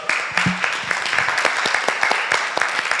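A crowd applauds steadily, many hands clapping in a dense, continuous patter of sharp claps that holds at a fairly loud level for the whole stretch.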